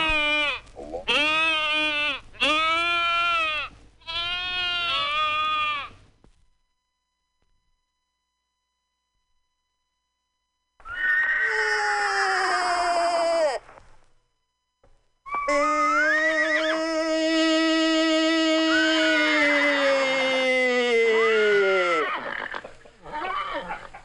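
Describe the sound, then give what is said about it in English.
A person imitates a cow moose call: a quick burst of short, nasal bleating calls, then after a pause two long, drawn-out wavering moans, loud with no talking. “Let's recap the moose calls that we've learned. Let's talk about the cow and the calling.”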